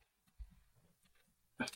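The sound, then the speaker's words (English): A dog gives a low, quiet growl that rumbles in short pulses for about a second, then lets out a single short, sharp bark. No one speaks. “Oh, no, now my dog's going to bark.”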